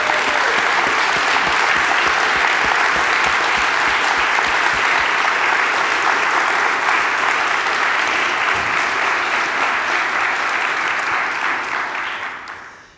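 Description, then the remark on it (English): An audience applauds the founding director of a choir in Edmonds steadily for about twelve seconds, a dense, even wash of many hands clapping at a loud, constant level before it tapers off quickly at the end. “And I would love for us to applaud as he has founded this choir in Edmonds.”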